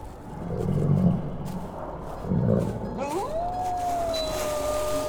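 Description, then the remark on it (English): Deep in a forest in thick fog, two deep, rumbling growls swell and fade in turn, then a thin rising whine climbs and holds as a steady, eerie tone over a low background hum. No one speaks. “And now, though deep in the forest, far from any trail, they begin to hear a low growl from somewhere within the pea soup fog.”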